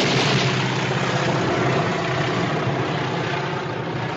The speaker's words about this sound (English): When the plane is diving, that's a moment of high suspense, and then when the plane sort of is banking for another strafing run, that's a moment of lower suspense.